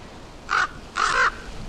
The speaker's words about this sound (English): When only the treetops were visible, a raven, cawing loudly and beating its wings, flapped and flopped onto the deck of the sand ship.